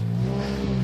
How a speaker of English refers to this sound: Oh, I love the sound of fiery loud engines in the morning. Ha ha. Fighter jet engines.